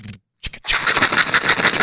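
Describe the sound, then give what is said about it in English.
Mentos candies rattle inside a container as it is shaken, a dense, continuous clattering that starts after a brief pause and a single knock, with no voices. “So those aren't dice. Those are Mentos.”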